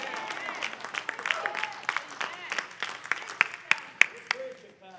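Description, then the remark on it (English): An audience claps and cheers enthusiastically for a preacher, with dense applause and excited shouts, sharp individual claps standing out as the noise gradually thins toward the end. “You're helping me when you say amen, and you clap and you get excited.”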